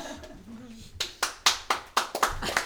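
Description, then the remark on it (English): A short burst of applause from a few people, sharp hand claps coming in an uneven quick rhythm after a brief stretch of quiet murmuring. “No need to clap.”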